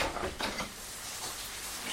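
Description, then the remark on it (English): A door opens with a short clatter, letting in a steady, dense hiss of heavy rain in Ireland that continues loud for the rest of the moment, with no voices. “I opened the door and got splashed with rain.”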